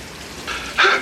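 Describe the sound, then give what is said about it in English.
A shower runs with a steady hiss of spraying water that swells in two surges, the second louder. No one speaks. “Who's taking a shower?”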